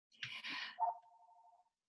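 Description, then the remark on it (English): A brief rustling burst gives way to a single steady electronic tone from an emergency-only phone, a warbling beep held for about a second at moderate volume, with no one speaking. “What? Just phone never rings.”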